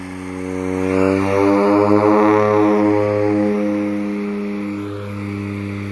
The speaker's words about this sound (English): Okay, there's ALE's plane heading down the runway, building up speed.